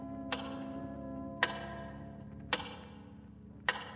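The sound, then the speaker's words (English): A large tower clock ticks slowly and steadily, four sharp resonant ticks about a second apart, each ringing briefly over a low constant hum. “And again, you stare out the window at the big clock.”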